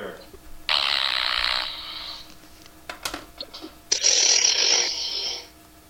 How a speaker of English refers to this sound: Sounds like the end of a cassette. Sounds like a cassette, like rewinding.